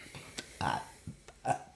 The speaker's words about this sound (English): Damn. Slay. Three burps.